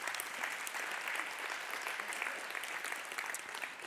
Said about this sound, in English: Yeah, you can go ahead and clap for them.